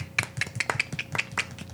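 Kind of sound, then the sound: crowd, hand clapping applause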